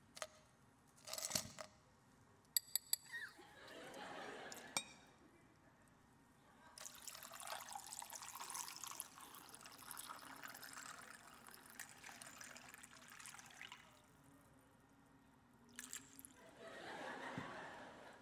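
Cold water pours steadily into a glass for several seconds, a bright rushing stream, preceded by a few sharp clinks and handling sounds, then another short splash near the end.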